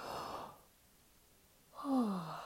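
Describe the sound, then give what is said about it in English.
A merchant yawns while reaching his arms high into the air and spreading his fingers: a long breathy intake, a short pause, then a voiced, downward-sliding groan on the exhale, all without any talking. “The merchant reaches his arms high up into the air, expands his fingers, and yawns.”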